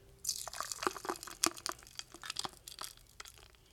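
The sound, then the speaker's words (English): A thick, slushy frozen cocktail, blended until frozen, being poured into a cocktail glass, with irregular wet plops, drips and icy crackles, fairly quiet, with no one talking. “And then we just pour it in.”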